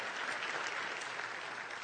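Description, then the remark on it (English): A church audience, invited by the preacher to clap because Christ is risen, gives a steady patter of scattered applause, moderate in volume and fairly subdued, a polite golf clap that holds evenly without building or cheering. “If we really got that, I think it'd be a little bit more crazy than just that nice little golf clap there, right?”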